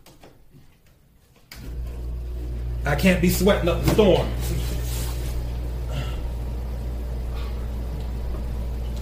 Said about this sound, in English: And see, now it's starting to get hot in here. All right. Hold on. I'm about to duck down. Give me a second. I have to turn on the air conditioner. You're going to hear it in the background.